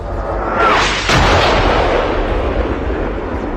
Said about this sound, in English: Is that an explosion I'm hearing?